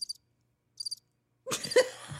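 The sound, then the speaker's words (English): Two short, high-pitched cricket chirps sound about a second apart, followed by a sudden loud burst of jumbled voices and noise. “Do the crickets.”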